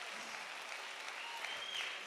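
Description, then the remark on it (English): A Pentecostal audience claps their hands to the Lord in praise, a dense, steady wash of overlapping hand claps, loud and continuous, with faint crowd voices mixed underneath. “Clap your hands to the Lord. Clap your hands.”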